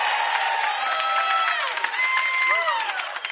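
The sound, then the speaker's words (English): An audience cheers and applauds, a steady roar of many voices with whoops and shouts rising above a continuous patter of clapping, loud and sustained throughout. “Come, all the theys make some noise.”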